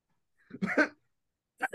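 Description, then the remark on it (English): A strained, stuck-sounding cough and throat clearing, two short rough bursts about a second apart, with nothing else around them. “I feel like I got a cough, but it's like not coming out. It's like kind of stuck in my throat.”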